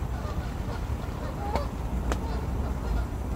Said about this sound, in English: The Canadian geese have been at it all night, territorially squabbling, as they do.